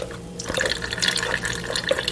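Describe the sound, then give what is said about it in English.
Rinse water (ice water) pours and trickles steadily after a brief quiet start as it is drained off churned butter, a continuous splashing drain with small drips and gurgles as liquid runs off. “Then drain out the rinse water.”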